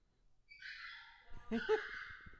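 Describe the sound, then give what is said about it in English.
Faint barking from several dogs going crazy: a drawn-out yelping cry followed by a short cluster of sharper barks near the middle, all fairly quiet. “Them dogs are going crazy down there.”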